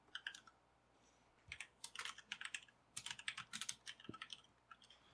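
Rapid, forceful clacking of a clicky computer keyboard, with bursts of sharp keystrokes in quick irregular runs, fairly loud, with no voices.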